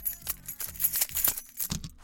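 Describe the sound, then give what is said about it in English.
A bunch of keys jangles, a quick series of bright metallic clinks and rattles as they are set down, with no talking. “Let me put them keys down, man.”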